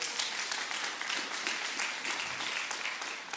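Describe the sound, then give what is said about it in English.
An audience claps steadily, a dense, even patter of many hands that holds a fairly constant level for a few seconds with no voices standing out. “Yeah, you can clap.”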